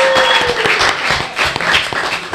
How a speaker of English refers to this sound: Well, we got to have an applause for that. Yeah.